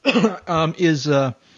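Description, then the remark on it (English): A man clears his throat and coughs, a quick series of four rough, voiced bursts lasting about a second and a half, with no talking. “Excuse me, I'm going to cough here.”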